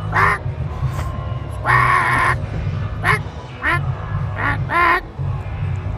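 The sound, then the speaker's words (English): A person's voice imitates a penguin character called Senator Squawks with about six harsh, nasal squawks, one drawn out longer than the rest, loud over a steady low hum. “He's a senator from Rhode Island, and he's also a penguin.”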